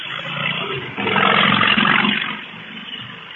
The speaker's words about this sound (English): It was a motorcycle. Oh, yeah, yeah. Nice. Like, I don't have a picture or anything, so it just sounds like a lion snarling or roaring